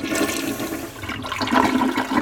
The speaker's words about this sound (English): Travelers have reported paper rolls that unravel on their own and toilets that flush by themselves.